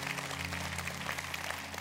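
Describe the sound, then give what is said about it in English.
An audience applauding, a dense, steady wash of many hands clapping at once, with a low electrical hum running underneath and no voices. “Can y'all give him a round of applause?”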